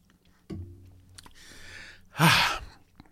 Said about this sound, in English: It was a sip of the light beer from Miller.